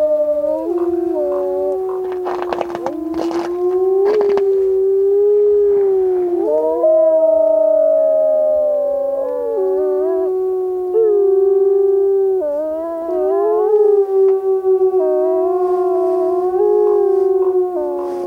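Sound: wolves howling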